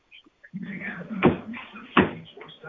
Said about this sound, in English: No, you gotta hit the floor with your foot. That's what I'm doing. No, harder.